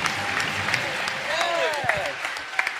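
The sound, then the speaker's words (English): An audience at the Celebration 6 panel for Smuggler's Gambit applauds steadily, a dense, even wash of clapping with sharp individual claps popping out, and a brief voice or cheer rising over it midway. “These guys deserve another round of applause.”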